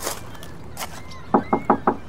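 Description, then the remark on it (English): Four sharp knocks on a wooden door of a building that looks long unused, in a quick, even rhythm, fairly loud, following a moment of faint rustling and soft background noise. “Doesn't look like anyone's been in there in a long while. I'll knock just to be sure.”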